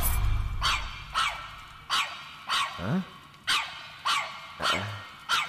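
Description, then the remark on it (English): A female dog barks repeatedly, about eight sharp barks at a steady, rapid pace, with a low growl rumbling at the start and between some barks. No one speaks. “This dog has a strange aura to her.”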